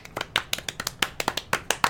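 Two people clap together, producing about a dozen sharp, crisp claps in a slightly uneven, unsynchronised rhythm. The applause sounds thin and sparse, with no voices.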